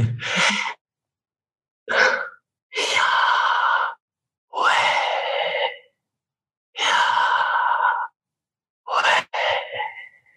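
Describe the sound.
A person takes slow, deliberate breaths, audible inhales and exhales alternating in about seven loud, airy bursts separated by brief silences, with no talking, demonstrating how the name Yahweh is like breathing in and breathing out.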